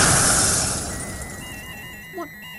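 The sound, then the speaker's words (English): An electrical explosion caused by short-circuiting wires bursts out as a loud, harsh crash of crackling noise that fades over about a second, leaving faint high ringing tones and a brief rising chirp. “Some sort of explosion.”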